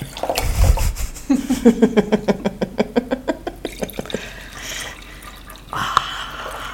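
California white wine glugs rhythmically from a bottle into a short, fat cup, a rapid series of loud gurgling pulses with rising pitch as it fills, then a brief splash as it spills near the end.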